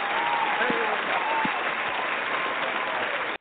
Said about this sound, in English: He's clapping himself, but you know, we're gonna get the crowd to clap for him because he's cool with us like that.